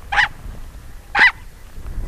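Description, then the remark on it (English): Sharp, high yelps from an Ethiopian wolf at people venturing near its den, three short calls spaced about a second apart, loud over a low rumbling background. “In addition to yelping at public radio reporters who venture too close to its den, the Ethiopian wolf is a creature of the day instead of the night, and howls not at the moon, but the sunrise.”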